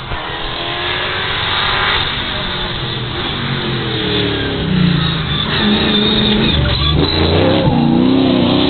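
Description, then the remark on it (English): A very fast Mustang race car roars past on a sunny afternoon with a light breeze, its engine rising in pitch and loudness as it approaches, then revving hard and fading, with faint crowd and voices in the background. “Here comes a very fast Mustang.”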